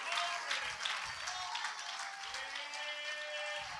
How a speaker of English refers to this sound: Come on, we ought to clap our hands and we ought to shout with a voice of triumph.